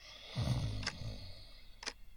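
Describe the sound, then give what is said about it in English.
A man snoring: one rough, low, rumbling snore lasting about a second, followed by quiet with two faint, sharp ticks. No one speaks. “A man lay snoring next to me.”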